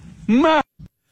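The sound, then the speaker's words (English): Golfer Bubba Watson imitates a goat, giving one loud, quavering bleat that wavers up and down in pitch. A brief, low vocal grunt follows. “I really want to focus on the goat impersonation that he does.”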